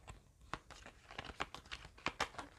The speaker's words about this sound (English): Okay, got a few cards that came out, so I'm just gonna have to do some additional shuffling a little bit.